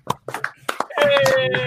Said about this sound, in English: They're all clapping for you. That's them all. Round of applause.